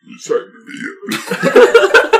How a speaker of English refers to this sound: Sorry, I had to burp. So, dang, dude. Is that what that was?